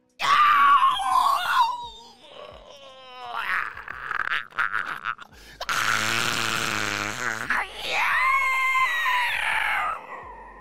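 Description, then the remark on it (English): A man yells and screeches in loud, strained bursts without words, his voice imitating animal calls, including rooster-like crowing, with brief pauses between outbursts. “He was making animal sounds, yelling.”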